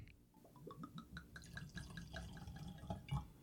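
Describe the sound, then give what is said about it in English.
Jameson Black Barrel whiskey is poured into a glass, a steady run of gurgling glugs and splashes rising in pitch as the glass fills, lasting a few seconds with no talking. “All right, I've got my glass poured.”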